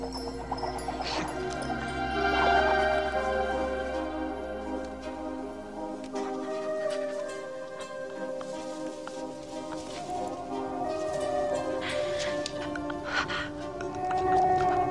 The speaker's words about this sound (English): And then we hear this music start. And really, and of course, even what attracts her there is the sound, is the whale sound.